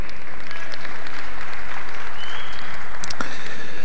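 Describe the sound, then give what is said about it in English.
A church crowd at Fellowship Alliance Chapel claps for Jesus steadily for about four seconds, a dense, even wash of clapping with no voices rising above it, holding a fairly consistent loudness throughout. “Yeah, you can clap for Jesus.”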